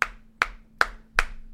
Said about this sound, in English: When everyone else is clapping for the nurses.